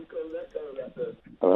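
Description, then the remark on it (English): A caller's voice comes through a narrow, tinny phone line, its phrases smeared and repeated by an echo, ending in a sudden louder burst. “You've got an echo”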